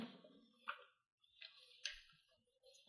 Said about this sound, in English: By the way, the sound of the paper that's happening is Cruz fucking with my tasting wheel. It's adorable.